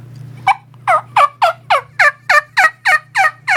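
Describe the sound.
A turkey hunter's kee-kee hen call: about eleven sharp, whistly yelps in a quick, steady series, loud, with a faint low hum underneath.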